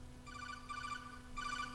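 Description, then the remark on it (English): A ringtone from a phone inside someone's pants plays in repeated short bursts of bright, trilling electronic tones, fairly quiet over a steady low hum, with no one talking. “The people look at your crotch for the phone.”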